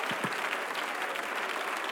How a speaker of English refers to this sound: Would somebody magnify the name of the Lord? Why don't you clap your hands one more time?